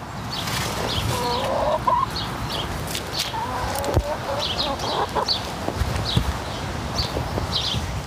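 A small flock of chickens clucks and murmurs, with short repeated calls scattered over steady outdoor background noise and occasional soft thumps.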